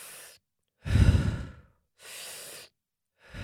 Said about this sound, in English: So you inhale and you exhale.